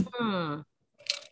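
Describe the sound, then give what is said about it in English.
A short voiced sound falling in pitch, then a pause, then a quick, hissy, wet slurp as someone sips water, lasting only a fraction of a second. “As I take a sip of water.”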